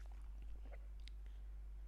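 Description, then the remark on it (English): A few soft gulping swallows as a person chugs water, with small wet clicks of the mouth and throat spaced over a couple of seconds against a quiet background. No one speaks. “Because maybe it was when maybe it was just because you were chugging water. That was loud.”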